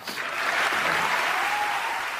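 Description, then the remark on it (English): Steady audience applause, a dense wash of many hands clapping at an even volume throughout, with no one speaking over it. “Now, when I hear that applause, I hear two things happening.”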